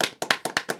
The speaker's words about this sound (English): Round of applause.